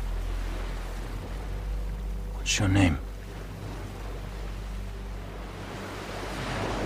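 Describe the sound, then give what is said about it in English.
A steady wash of sea waves and low rumble surrounds a small boat, continuous and fairly loud throughout, with a brief spoken question from a voice partway through. “Look, we're on this boat together, with very little water, not much food.”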